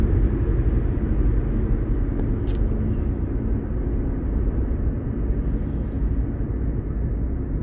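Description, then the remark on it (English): A steady, heavy low rumble of traffic on a busy freeway, continuous throughout with no talking and a brief faint click early on. “Oh shit, there's traffic. Traffic on the freeway.”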